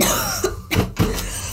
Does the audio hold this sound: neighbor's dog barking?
no